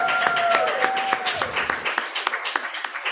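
An audience at an open mic reading applauds with dense, crackling claps that thin out into scattered individual claps, and a brief high whistle-like tone fades early on.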